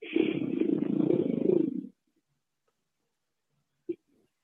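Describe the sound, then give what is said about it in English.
A single loud, growling roar lasts nearly two seconds and then cuts off into silence, followed by one faint short knock near the end. “Appreciate the roar.”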